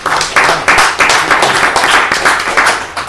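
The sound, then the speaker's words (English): A crowd applauds steadily, many hands clapping in a dense, continuous patter with no single rhythm, staying fairly loud throughout with no voices on top; the applause is for two paramedics at a commissioners' meeting. “So I just want to give y'all a round of applause.”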